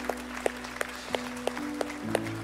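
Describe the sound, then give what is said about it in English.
An audience at a morning church service claps for God after a prayer, in a steady, even rhythm, about three claps a second, fairly soft, over sustained low keyboard chords. Nobody speaks. “Come on, let's give God a round of applause this morning.”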